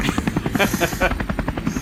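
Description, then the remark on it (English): A low, rapid whirring buzz of the supersonic beating wings of a Yanma in the Viridian Forest, pulsing in a fast steady rhythm like helicopter blades, fairly loud and continuous with no talking. “This can only be the supersonic wings of the Yanma.”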